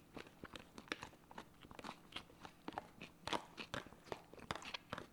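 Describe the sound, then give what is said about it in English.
Crisp crunching of someone chewing a prepackaged raw kale salad with edamame, with repeated sharp bites and crackly mastication in an irregular rhythm and no talking. “I tell you what, this kale really is exhausting.”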